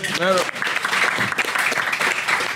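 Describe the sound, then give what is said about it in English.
A steady round of applause for MacBot, dense and fairly loud, keeps going for a few seconds. A brief voiced shout or cheer rises over the clapping at the very start. “Good round of applause for MacBot.”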